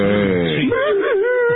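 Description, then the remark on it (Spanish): A voice imitates an exaggerated, melodramatic crying wail, a loud, drawn-out moaning sob that bends in pitch, rising and falling in wavering swoops. “hay gente que llora y nadie... allí a la criolla, o sea, porque sin cuidar la expresividad, sin controlarse, y por ahí tienen un llanto ridículo.”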